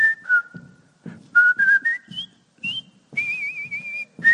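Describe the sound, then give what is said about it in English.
Someone among troops marching four abreast across a bridge whistles a brisk, march-like tune in short clear phrases, ending on a long wavering note, with soft low thumps keeping time underneath. No one speaks. “And so somebody started to whistle a marching tune.”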